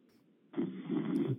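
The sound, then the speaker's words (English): A single rough, rasping snore, lasting about a second, sounds muffled over a thin phone line on a voicemail left at 11:30 at night, after a moment of low background hum. “I know it's a voicemail, so that doesn't work, but I think he called me at 11:30 at night and is snoring.”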